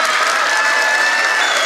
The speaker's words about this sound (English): That was his biggest applause line.